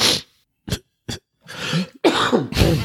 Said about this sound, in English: Or a cough. I'm still ravaged with this cold.